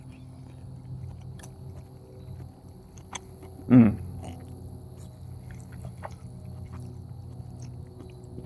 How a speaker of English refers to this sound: Wow, pardon the chewing. This is very good. It definitely could use a little bit more seasoning. I think that the base of the rice and the quinoa was a little overpowering.